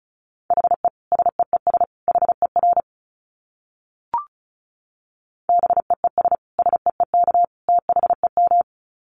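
Rapid Morse code beeps at 35 words per minute at a steady mid pitch, two quick bursts of dots and dashes separated by a short gap with a single faint click, no voices present.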